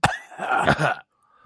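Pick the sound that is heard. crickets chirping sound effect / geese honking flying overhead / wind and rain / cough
cough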